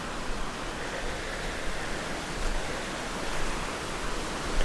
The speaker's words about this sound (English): And once they get eroded, they seem to sort of become streams themselves, so I'm getting quite close to the stream.